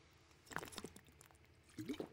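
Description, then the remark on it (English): Water pouring in two short, splashy bursts separated by a brief pause, fairly quiet, with no voices. “The water sound.”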